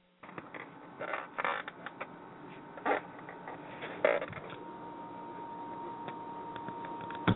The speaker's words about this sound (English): I dropped my phone.